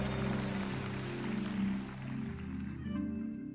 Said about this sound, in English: Give the Lord a hand clap one more time. Come on, give Jesus a great big hand clap.